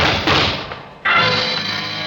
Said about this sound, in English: Shots came from behind my office door.